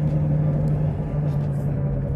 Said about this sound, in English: But I'm in a car now, so... not riding around the skateboard anymore, duh.